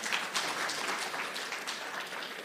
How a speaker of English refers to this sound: You're allowed to clap. That's a good thing.